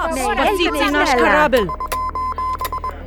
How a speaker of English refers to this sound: For nearly 100 years, Morse code was the official language of international communication for ships in distress.